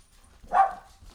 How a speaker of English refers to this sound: They have guard dogs. You'll have to be careful. Nice.